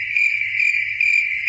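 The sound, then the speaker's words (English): Crickets chirp in a steady, continuous high-pitched trill that holds evenly for a moment and a half, clear, with no voices over it. “Crickets.”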